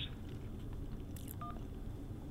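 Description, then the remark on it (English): A single short telephone keypad tone beeps once, brief and clear, as a man uses a phone, preceded by a faint clicky rustle and set against a steady low background rumble with no talking. “Oh, he's on the phone. He can't even listen to me.”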